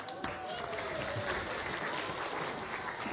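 An audience claps steadily for a few seconds, a dense wash of many hands filling the room at a moderate level with no clear pauses.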